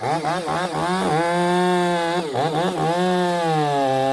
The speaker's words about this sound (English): With the chainsaws running, this team, members of the Pilot Rock Hand Crew, is learning how to climb trees and cut off dead, beetle-ravaged tree limbs, and how to completely take down giant redwood trees,